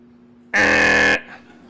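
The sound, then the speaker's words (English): A loud, harsh buzzer blares once for about half a second, cutting off abruptly and leaving a low steady hum in the background. “Like as a kid, I wondered, like, what if there was a buzzer that went off every time you did something wrong?”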